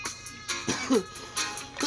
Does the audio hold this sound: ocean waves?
no